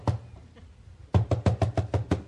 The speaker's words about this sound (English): You guys getting the scene here? Peter's knocking on the door.